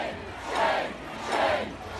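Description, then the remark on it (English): A large crowd of counter-protesters at a rally in Lafayette Square boos loudly, drowning out right-wing protesters, the jeering swelling in two sustained waves over a couple of seconds, a dense roar of many voices with no individual words. “they were completely drowned out by loud boos and Game of Thrones references”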